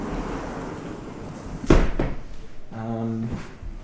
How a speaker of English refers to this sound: Shall we close the door, or that easier?